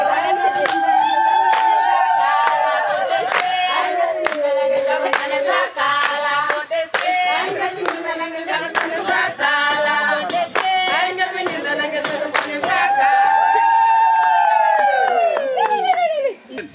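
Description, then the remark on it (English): A crowd celebrates a person's arrival back at a well with brisk, rhythmic hand clapping while voices sing and cheer over it, loud and steady throughout before cutting off at the end. “As you saw, they celebrated for me.”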